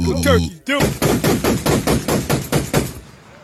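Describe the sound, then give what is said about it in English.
A brief voice gives way to a rapid, evenly spaced burst of about nine loud, booming shots from a huge rifle, each sharp crack ringing briefly before the next. “It is a huge rifle of sorts. That's a cannon. I'm surprised one human being can hold and fire that.”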